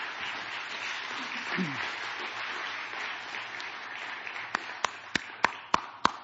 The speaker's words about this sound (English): Good job. Give them some more applause. That's so good.